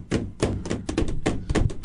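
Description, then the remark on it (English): An upside-down keyboard is tapped repeatedly for the keyboard challenge, about nine hollow knocking thuds in an uneven rhythm with a slight rattle after each hit, fairly loud and with no talking. “I'm going to flip this keyboard upside down and give her a tap.”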